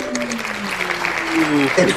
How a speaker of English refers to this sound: Ooh, we're doing the single props over here. Look, hey, we got the soul clap. We got the soul clap with me. Oh my goodness! Hey, I felt that one. That was nice. That was nice.